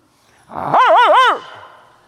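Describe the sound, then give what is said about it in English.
A person imitates a Doberman barking: one loud, drawn-out vocal woof that wavers up and down in pitch three times, with no talking around it. “Bark with me. 1, 2, 3. That was good. We're a lot like that Doberman.”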